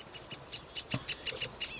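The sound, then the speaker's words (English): A mixed foraging flock of chickadees, kinglets and a downy woodpecker calling in a temperate woodland: a quick, steady series of about ten thin, high-pitched chips and tweets, clear, with no voices. “A closer look and listen reveal that this foraging flock includes several species of birds, chickadees, kinglets, and even a downy woodpecker.”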